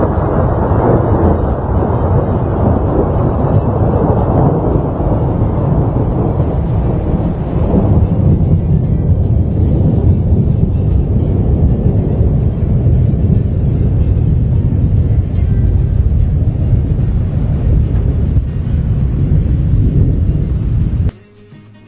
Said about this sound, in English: We're just going to listen to some thunder rumble while you catch up.